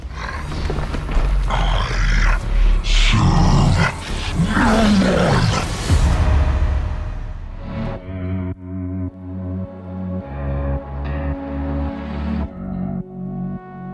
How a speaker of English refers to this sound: I would take that recording and morph it with my dog's growls and a couple of other things to give it a lot more body, a lot more presence, and this is what it sounds like.